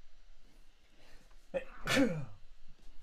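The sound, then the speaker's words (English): A single sharp, fairly loud sneeze bursts out, with a brief intake of breath before it against quiet background noise. “Common sense, bless you again.”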